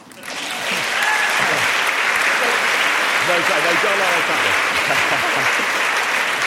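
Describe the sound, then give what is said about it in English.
An audience bursts into sustained applause after an opening speech at a debate on the Daily Mail; it swells within the first second and holds steady and loud, with a few voices faintly audible beneath the clapping. “I obviously mustn't clap, because I have no opinions being from the BBC.”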